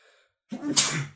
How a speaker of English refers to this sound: Excuse me, that's going to look funny on the video because I'm going to audit that sneeze out. I'm going to edit that sneeze out. So that's going to look funny. It also probably sounded funny.